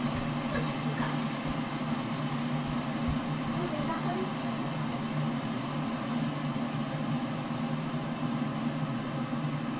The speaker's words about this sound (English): Anchor is recording my kettle boiling